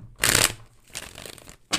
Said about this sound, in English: I'm going to give us a good shuffle. Here's your ASMR.